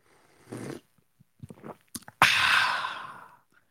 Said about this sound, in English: I think that's a sip of the day. I think we're underway with a good sip of the day.